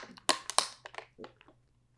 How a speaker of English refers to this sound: That's me drinking my water.